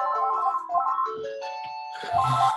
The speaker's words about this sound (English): Chrissy, the phone's ringing.